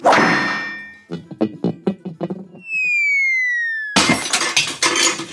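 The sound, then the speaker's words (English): A hammer smashes a bedside lamp on a nightstand with a loud crash of breaking glass and rattling clatter, then a sustained falling whine and a second harsh shattering crash. “Now don't be alarmed by this hammer in my hand.”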